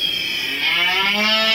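A single long, loud cow moo with a low droning tone that rises slightly in pitch as it stretches on. No one speaks.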